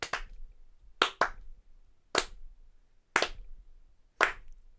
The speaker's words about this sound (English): I honestly think this deserves another, like, 30-second applause.